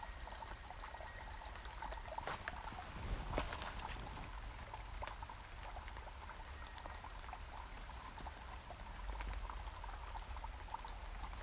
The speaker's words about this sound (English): I was really taking a long time just so I could hear the rain, though. I like listen, it. Listen to the rain. Everyone, take a moment.